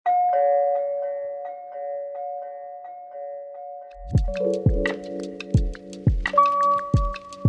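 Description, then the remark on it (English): A doorbell chimes with sustained, ringing tones, then a steady run of low thumps and sharp ticking sets in beneath a further chime. No one speaks. “Well, with no further ado, shall we find out who is at the door?”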